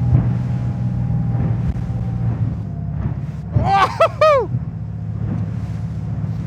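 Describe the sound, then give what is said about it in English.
A speedboat on a fast thrill ride drones steadily under rushing wind as the hull crashes over waves, and a short, high, wavering human cry rises and falls partway through. “We're crashing over the waves.”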